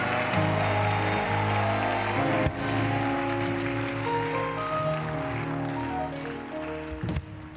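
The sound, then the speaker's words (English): A church audience claps their hands and screams in a dense, continuous roar, blended with sustained organ-like chords that shift pitch throughout, loud with no pauses. “Come on, clap your hands and scream.”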